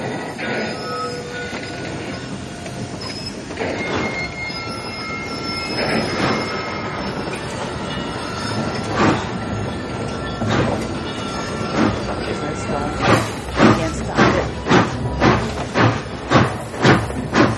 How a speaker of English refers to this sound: It's an old-time train. Let's boost the sound a little. What I want you to see in this train, this is one that climbs the mountain. Feel the power. Feel the power. A little more sound.